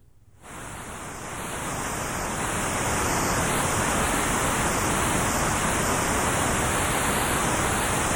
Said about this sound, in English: To illustrate, let us use the white noise generator. Here it is again, unmodified.